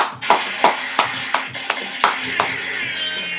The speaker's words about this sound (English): I decided that I'm going to go vegan. Okay, let's clap that up. Yeah. Let's clap that up.